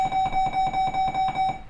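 A school bell rings loudly and continuously, a rapid rattling clang with a bright, steady high-pitched tone, about eight strikes per second and no voices.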